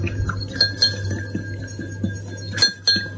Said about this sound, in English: And just stir that into the stock that I've reserved. Because you don't want it really hot when you stir the tapioca starch in. Just whisk it in with a fork. Just mix that until there's no lumps.